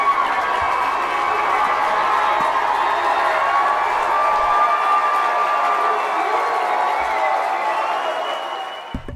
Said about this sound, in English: We got the breaking news today that Jimmy Carter is cancer-free, which is amazing, and I really think that that deserves a round of applause, everybody.